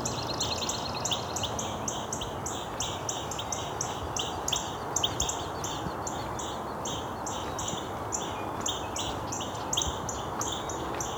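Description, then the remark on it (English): Red-winged blackbirds calling in a rapid, continuous stream of short chirps, several birds overlapping, heard over a steady outdoor rushing noise with no talking. “Some red-winged blackbirds.”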